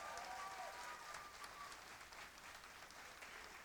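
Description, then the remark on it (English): Sustained applause from a crowd for the actors, a dense steady patter of many hands clapping at an even loudness throughout, with a faint whistle or cheer near the start. “Can we give all our actors a big round of applause?”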